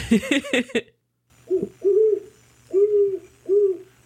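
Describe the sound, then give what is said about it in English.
A great horned owl hoots four times in a low, mellow, evenly spaced series, following a brief burst of quicker, higher calls at the start. A faint low hum runs underneath. “That's it. That's an owl, yeah.”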